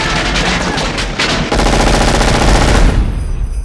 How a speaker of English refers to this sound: It's a lot of gunfire.